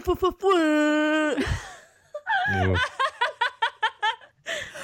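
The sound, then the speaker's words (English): A voice imitates an air horn with a loud, steady, buzzy blare lasting about a second, after a few short vocal bursts, and is followed by a run of rhythmic laughter. “Oh my gosh, your air horn sound is so good.”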